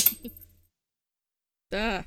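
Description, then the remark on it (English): A flipped earring clatters and bounces, hitting a keyboard, then a desk, then landing on the floor, making a quick cluster of bright clinks that fades into silence, followed by a voice exclaiming about a second later. “Well, I flipped it, it hit my keyboard, it hit my desk, and then it landed on the floor, and now the dog's trying to eat it.”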